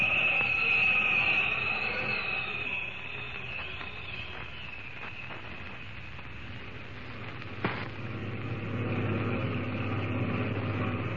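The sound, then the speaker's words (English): A steady, droning rumble of heavy oil truck engines rolling along at night, continuous, with a faint hiss over the top and one brief knock partway through. “Sure got a fine night for our first trip with these oil trucks”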